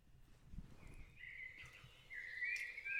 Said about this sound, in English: We wake to birds singing. There are so many here.